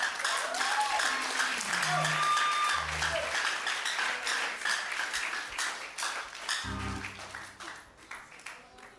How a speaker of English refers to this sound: I didn't ask you to clap, but can you clap with passion?